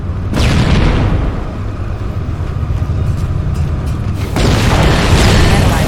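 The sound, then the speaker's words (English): A loud explosion that destabilizes a fusion reactor bursts out and settles into a heavy, continuous rumble, then a second blast hits near the end, with no talking. “One down. Fusion reactor number one destabilized.”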